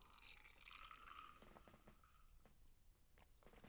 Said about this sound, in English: Excuse me here while I take a quick sip.